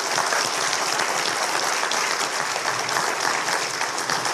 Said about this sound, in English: You guys give him a hand, y'all.